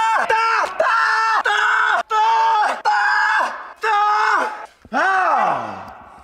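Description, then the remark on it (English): A loud voice lets out a series of sustained screams in quick succession, the final one sliding steeply downward in pitch like someone plummeting. “Okay, so he wants us to fall off, scream, and the scream is the new 9B Counter soundtrack.”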